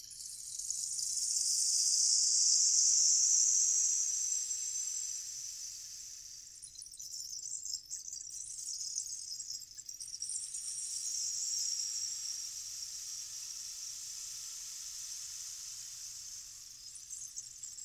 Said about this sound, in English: Close your eyes if you can, and then just enjoy the sound of this rain stick, okay?